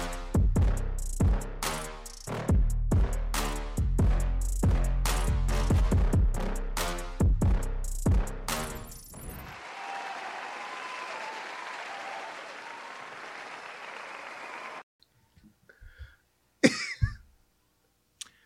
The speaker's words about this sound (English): I deserve all that applause. I was about to say that was a long applause. It was a very well-deserving applause.